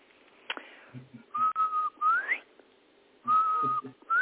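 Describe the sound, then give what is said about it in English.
A person whistles a two-note birdcall imitating a bobwhite, a steady low note then a rising slur, repeated twice with a pause between, clear with no talking. “And that poem was called This Kind of Rainfall, and I should say that it references the song of the bobwhite, which is, let me see if I can whistle it.”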